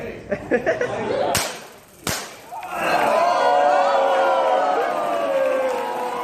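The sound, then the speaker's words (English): A few rapid crackles and two sharp, loud snaps ring out as an intern at a company is hit with a taser, then a crowd of co-workers erupts into sustained cheering and excited yelling that carries on steadily to the end. “The crowd cheers as the person screams out in pain, like in this footage of an intern getting hit with a taser.”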